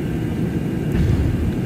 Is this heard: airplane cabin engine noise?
yes